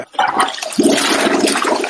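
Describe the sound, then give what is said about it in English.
A toilet flushes loudly, a sudden rushing gush of water that swells after a brief start and keeps churning steadily, with no one talking. “No, you should have toilet flushed.”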